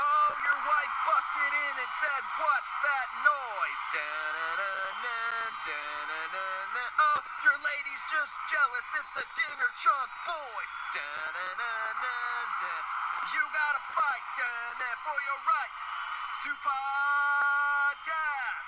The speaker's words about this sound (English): Do you hear that screaming crowd, Dinger Dog? I feel them in my bones. I remember them.